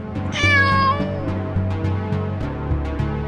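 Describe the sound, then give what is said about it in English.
A single high, drawn-out meow from Captain Basque's kitten, Snuffles, rises and falls near the start, heard clearly over steady, rhythmic background music that continues afterward. “We have to rescue Captain Basque's kitten, Snuffles.”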